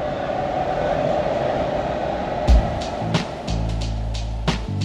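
An LA Metro train bound for Union Station in downtown Los Angeles rolls along the rails with a steady rumble, then a series of sharp metallic clacks and thumps over the track joints in the second half.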